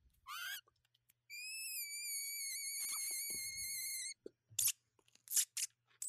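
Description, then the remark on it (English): A person imitates a whistling kettle: a quick rising squeal, then a long, steady, high-pitched wavering whistle lasting about three seconds, followed by a few short breathy hisses. “Oh, it's like a kettle.”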